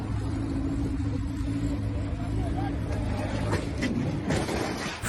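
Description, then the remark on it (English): A speeding car roars past with a steady engine rumble, then a couple of sharp scraping bangs toward the end as it sideswipes the car on its left, with faint voices underneath. “And you hear, he hit something before that, too. Yeah, like, he sideswiped the car.”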